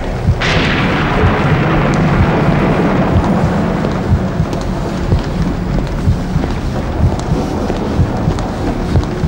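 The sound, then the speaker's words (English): A thunderstorm with a sudden loud clap of thunder near the start, followed by a long, deep rolling rumble over a steady hiss of heavy rain, continuous. “It's not just the storm, either.”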